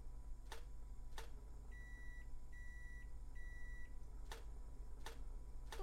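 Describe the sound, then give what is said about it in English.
A pair of sharp toaster pops, then three long, steady microwave beeps, then three more crisp pops at an even pace, all clear over a low background hum. “The toaster and the microwave. 3 short pops. 3 long beeps. 3 short pops.”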